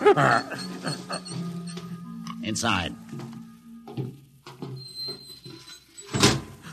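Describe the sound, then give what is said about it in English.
A door to the main control room opens with a loud whooshing rush partway through, then shuts with another burst near the end, while voices talk beneath and between the two sounds. “Open the door, Bobo.”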